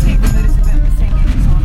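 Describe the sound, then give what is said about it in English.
Steady, loud low-pitched rumble of a car cabin while driving, continuous road and engine drone filling the space, with a faint murmur of voices blended underneath. “So should we record even though my mom's in the car?”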